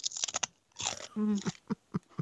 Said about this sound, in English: I wonder if your chew is daintier than mine. Let's see. Well, I wish, but maybe I'll chew off my. Oh. Yeah, she got a dainty chew. Here's mine.